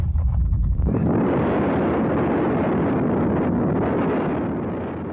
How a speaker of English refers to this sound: We could see the police helicopter, and they're making tight turns, which means there's something serious going down. It's like they're like in the combat zone. They're turning real tight. Helicopter.